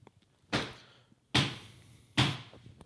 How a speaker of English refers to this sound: Those are heavy footsteps.